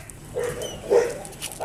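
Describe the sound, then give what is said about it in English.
Dogs let out a couple of short, high yips and barks, with a brief louder one in the middle over faint background noise, riding with their owners on a bullet train from Tokyo to Karuizawa in Japan, sitting on plastic-covered seats without cages. “These lucky dogs and their owners rode the bullet train from Tokyo, Dongjing, to Karuizawa, Qingjingze, 1 hour away.”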